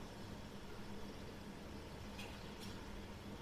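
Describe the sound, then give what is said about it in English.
A steady, low ventilation hum fills the whole clip with constant airy noise and a faint low drone, broken only by two brief, soft high clicks near the end. No one speaks. “Which part of my body resonates with the ventilation?”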